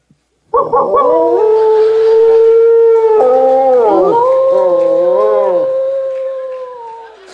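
A long, loud wolf howl rises abruptly and holds for about seven seconds, its pitch wavering and bending in places before slowly fading at the end, with no talking over it.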